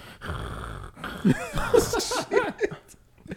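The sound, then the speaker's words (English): A voice imitates the labored, congested nasal breathing of a 1-year-old with only one nostril working: a run of snuffly, wheezing snorts and whistling breaths in uneven bursts, fairly loud, with no words spoken. “This motherfucker was so congested. I mean, he had one nostril working, right?”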